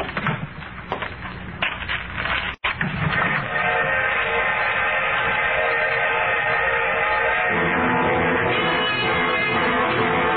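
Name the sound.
train arriving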